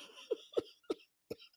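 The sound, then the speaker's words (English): Four short, sharp coughs in a loose, uneven rhythm, each a quick bursting huff, with brief quiet gaps between them and no talking. “Oh, Lord, I'll cough it.”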